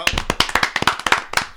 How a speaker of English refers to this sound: What the fuck is up with that golfers clap?